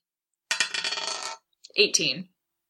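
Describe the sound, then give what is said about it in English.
Dice are rolled for a hypnotism power, rattling in a bright, clicking burst for about a second, then after a brief pause a shorter clatter as they tumble and settle, coming up 18. No one speaks. “All right, so roll that.”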